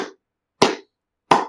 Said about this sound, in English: Good job, boys. Great work. A slow clap.